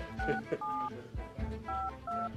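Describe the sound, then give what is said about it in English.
A phone number being dialed to call a man's cell phone: a quick series of DTMF keypad tones, each a short steady dual-pitch beep, clear, with brief gaps between presses. “I'll keep trying his cell.”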